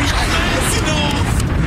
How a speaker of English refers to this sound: Explosions left and right. Left and right.